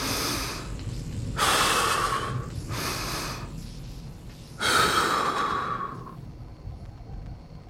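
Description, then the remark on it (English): Slow, deep breaths: a long inhale, a shorter one, then another long, forceful breath, each a broad airy rush with quiet pauses between, no talking. “I focus my breathing.”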